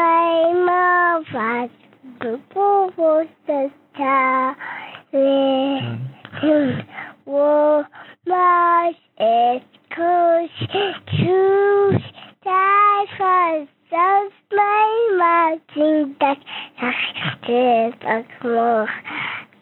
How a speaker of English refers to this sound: I found a recording of … as a toddler singing the Klingon Imperial Anthem, which I'm going to insert here